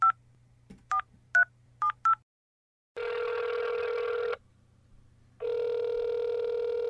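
A phone number is punched in as five quick touch-tone beeps over a low line hum, followed by a pause and two long, buzzy ringing tones on the line; the call is to Alderman Frank Edwards' office.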